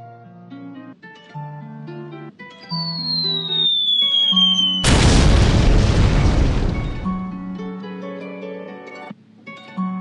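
A hip-hop intro of sustained melodic tones, with a falling whistle that leads into one loud, deep boom midway through, after which the music carries on. No voices.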